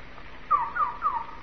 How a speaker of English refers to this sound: We were in a lovely garden. It was very quiet except for a single bird. And it sang strangely and sadly.